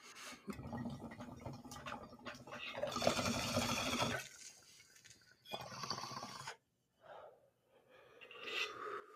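Bong water bubbles and gurgles through a long pull, the smoker's second hit of the day, with a short pause before a second burst of bubbling, then a sharp exhale and breathy gasps at the end.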